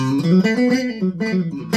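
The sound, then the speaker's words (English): A Telecaster-style electric guitar on its bridge and middle pickup setting plays a short, bright melodic phrase with a clean, twangy tone, notes ringing clear with no talking. “Bridge and middle.”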